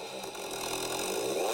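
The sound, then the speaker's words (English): A 1200 motorcycle engine with an aftermarket exhaust pipe snarls steadily, its raspy, buzzing tone climbing in pitch and loudness toward the end as the throttle opens. No voices are heard. “Yeah, you put an aftermarket pipe on there, like a Yoshi mirror or some shit.”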